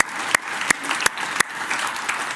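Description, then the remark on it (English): An audience claps steadily in a dense wash of applause, with four sharp, louder claps standing out at an even beat above the crowd noise. “Let's clap with that person, help them not feel alone.”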